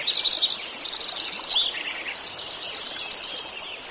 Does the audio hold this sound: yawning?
no